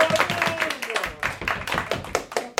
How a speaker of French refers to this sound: Et je voudrais, s'il vous plaît, un tonnerre d'applaudissements pour notre gagnant.